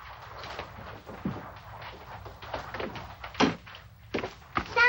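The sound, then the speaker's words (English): A heavy door, set by a timer, thuds shut and locks amid a series of dull mechanical clunks and knocks, the loudest near the end, over a low steady rumble. “That must be the door timer. Santa, he locked us in.”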